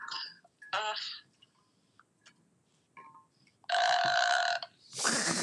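A few short, croaky bursts, then a loud, drawn-out burp lasting about a second, followed by a rougher, breathy burst right after. It is prominent, with no talking.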